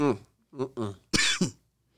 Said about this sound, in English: Why are you coughing? I think it's a smoke. Sorry to hear that. I've cut way back on my smoking since I've been sick. Phlegmy. Get that out of the way.